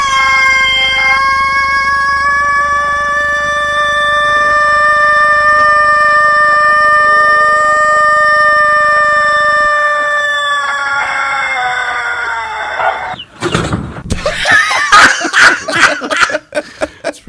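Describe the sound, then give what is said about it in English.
A rooster lets out one extraordinarily long, sustained crow, loud, holding steady for over ten seconds before trailing off into choppy, cackling bursts. “the rooster thing popped, or the MP3 for that is up there”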